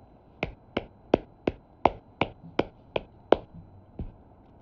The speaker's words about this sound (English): I got a golf clap so I don't wake up my wife.